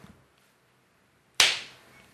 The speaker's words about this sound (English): Give me one more of those beauty claps. Really clap it up. Just need to sync the audio and video here. There we go. That's all we need. Nice just little one clap. Nice clap.